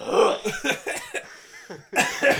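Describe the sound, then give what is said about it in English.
A person with COVID gives a string of harsh, throaty coughs in quick irregular bursts, with a short pause before a final louder fit of coughing. “in the background you're going like...”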